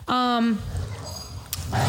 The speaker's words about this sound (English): Oh my, that's what I'm saying about the dogs, yo. They're wildin'.